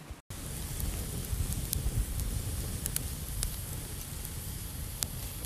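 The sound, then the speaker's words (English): A steady crackling roar of a fire, lit to boil water, fills the scene, with dense low rumble and scattered sharp pops and snaps throughout; no one speaks. “There it is. That fire's roaring now.”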